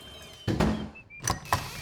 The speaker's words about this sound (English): Instead of going through the door every time, have you tried just opening and closing the same door?